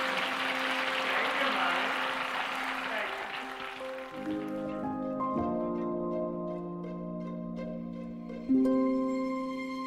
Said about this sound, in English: The crowd just roared with approval. They wouldn't stop their applause.